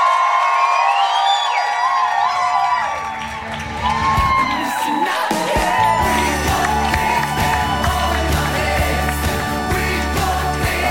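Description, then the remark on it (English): A large audience claps and cheers loudly without pause as Dr. Gabor Maté is introduced as a hometown hero, with high whoops and whistles cutting through the roar; the noise dips briefly early on, then swells again and holds steady. “Folks, give a massive round of applause for none other than your hometown hero, Dr.”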